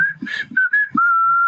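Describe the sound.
A person whistles the P.C. Richard and Sons radio advertising jingle, a few quick pitched notes stepping around before settling into one long, steady held tone at the end.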